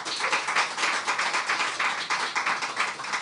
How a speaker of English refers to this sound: By applause, we'll start with Chuy Garcia. And you can applaud hard, but we still know that's only one person.